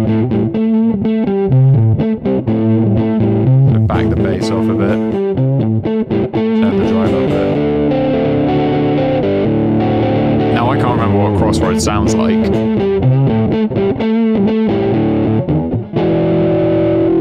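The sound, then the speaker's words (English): Overdriven electric guitar through the Brit Plex 4x12, with the amp head's drive off and an asymmetrical crunch saturation drive switched on, plays a chunky riff with sustained chords and bends. The distortion is gritty and crunchy, loud and steady, while a man briefly talks over it. “So now if we go into the drive and we go for, say, saturation and we pick, let's go for the asymmetrical crunch and switch that on.”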